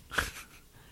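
A single sharp sneeze bursts out early, a brief hissing blast that quickly fades into a faint breathy tail, with no talking around it.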